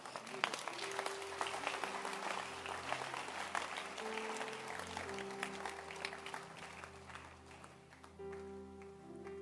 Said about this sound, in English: Now, if you can clap.